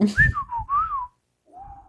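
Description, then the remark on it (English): A person whistles a string of warbling, sliding tones in imitation of robot beeps and boops, then pauses briefly before one last wavering whistle. Fairly loud, with some breathy low thumps underneath. “Yeah, if I could whistle, I'd make some beeps and whistles and boops.”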